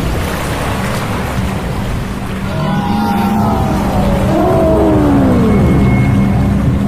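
A loud, continuous roar of rushing flood water surges like a tidal wave, building slightly, while a few wailing, sliding tones sweep through in the middle.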